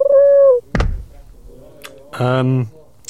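A pigeon trained to open beer cans struggles with a beer can: a brief whistling tone, then one heavy thunk, a short hiss, and finally a loud, buzzy, drawn-out squawk.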